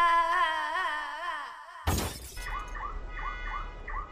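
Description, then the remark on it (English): A warbling electronic tone fades out, then a single loud smashing crash with a shattering edge breaks the smart device Elaine unit 64235N, followed by crackly noise and repeated short glitchy chirps. “He has destroyed Elaine unit 64235N.”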